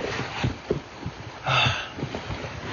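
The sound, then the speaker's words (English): Rain patters steadily on a car, a dense, irregular drumming of small taps over a soft hiss, swelling briefly into a louder wash midway through. No one speaks. “We can have the raindrops beating off of the car.”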